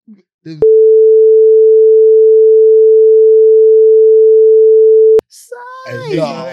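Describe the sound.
A single loud, steady censor beep holds one mid-pitched tone for about four and a half seconds, cutting off talk; people speak briefly before it and resume right after.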